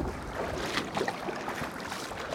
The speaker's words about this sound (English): We parked our car beside a bridge that goes over the Brazos River, carried our canoe down a steep embankment, and put our boat in the water.